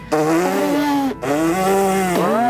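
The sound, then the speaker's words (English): A voice imitates an elephant trumpeting: two loud, buzzy, brassy blasts with wavering pitch, split by a brief breath. It's raspy and sustained, with no talking. “I'd need to work on my elephant noise, though”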